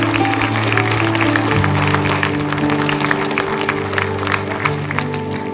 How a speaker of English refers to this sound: Can you give the Lord a hand clap of praise this morning?